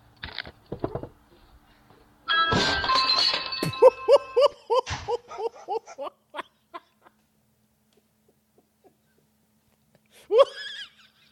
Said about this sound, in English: That must have been the reinforced glass, because that dog could just bust his mouth through.